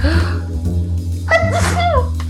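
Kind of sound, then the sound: human body sound, sneeze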